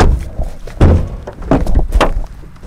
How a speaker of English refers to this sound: decided to drop by and knock on his door.